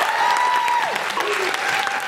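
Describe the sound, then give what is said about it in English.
An audience applauds Florence Schechter in a dense, steady wash of clapping that holds loud throughout, with a sustained high cheer or whistle gliding above the claps before it drops away. “Please give it up for the incredible Florence Schechter.”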